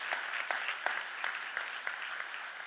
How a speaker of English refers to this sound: Thank you for the clapping. It meant the world to me, for real.